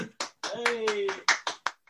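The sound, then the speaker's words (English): A golf clap: about eight soft, unhurried hand claps, fairly quiet, with a brief sustained voice sound partway through. “I'm not gonna edit a fucking golf clap.”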